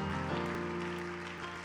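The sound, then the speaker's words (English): A church audience at a Tuesday evening Bible study claps steadily to thank God, a dense, continuous patter of many hands mixed with sustained music chords, with no speech. “Can we clap our hands together and thank God for what he's about to do in this house?”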